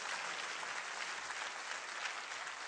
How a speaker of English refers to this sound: Give her a clap as she runs up there.